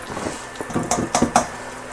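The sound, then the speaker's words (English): Vinegar being poured into a bowl: a soft, steady trickle broken by three quick splashy glugs near the end, with no voices. “And again, we're going to pour it over the bowl because extra is not going to kill us in this instance.”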